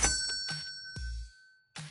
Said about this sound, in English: Let me just do the outro here with this. Where's my cash register?